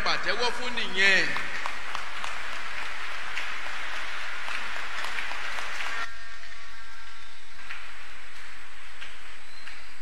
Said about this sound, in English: But to God be the glory. The story has changed. Oh, that is what you should clap for.